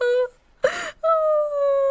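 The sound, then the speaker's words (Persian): A child wails and cries, voicing a tiny fish crying for its mother in the dark after being swallowed, in a children's story: a short high wail, a harsh gasping sob, then a long, steady, drawn-out wail that slowly falls in pitch. “وقتی چشماش به تاریکی عادت کرد دید ماهی خیلی ریزی یه گوشه نشسته و گریه میکنه.”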